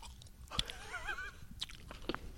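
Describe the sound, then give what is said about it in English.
Quiet chewing of a thick piece of dry, tough jerky, with a few sharp crunchy bites spaced about half a second apart and soft mouth noises in between. No one talks. “We'll just get a little bit of chewing action.”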